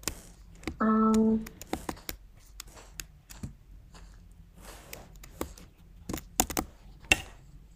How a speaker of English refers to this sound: I'm sorry if you guys can hear my keyboard clicking. I still have to figure out how to not get my keyboard clicking in it.